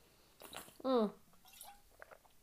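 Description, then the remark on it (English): A sip of water: a few soft wet slurps and a swallow, with a brief voiced gulp-like sound in the middle, then quiet mouth noises and a click at the end, as the speaker drinks water to wet their throat. “hang on, let me lube my throat again.”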